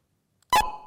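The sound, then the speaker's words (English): A pair of electronic beeps 30 milliseconds apart, so close together they nearly merge into one, a sharp, loud tonal blip with a bright attack that rings briefly and fades, after a moment of silence. “If you put those two beeps 30 milliseconds apart, which is the limit, as I said, for human interaction singing, it sounds like this.”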